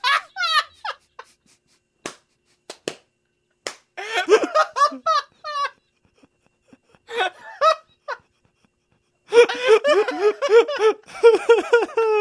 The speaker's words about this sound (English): And then she slaps him twice out of guilt.